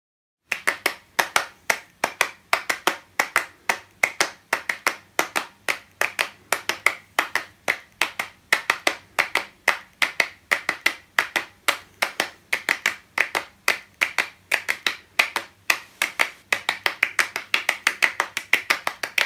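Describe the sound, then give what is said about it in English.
Crisp hand claps repeat in a quick, steady rhythmic pattern for the whole stretch, interlocking in a performance of the piece Clapping Music, with no voices. “Oh, except I've done clapping music.”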